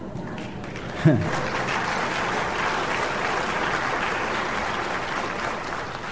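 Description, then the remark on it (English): An audience claps steadily for several seconds, a dense, even wash of applause with a brief vocal cry rising out of it near the start. “A half clap over there.”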